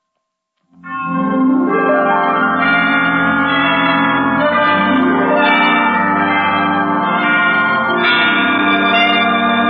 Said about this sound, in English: Well, 5 o'clock. I didn't know the hospital had chimes.